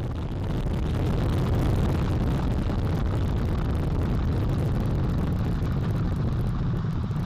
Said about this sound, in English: All four RS-25 engines on the core stage and two solid rocket boosters now propelling the vehicle at 128 miles per hour.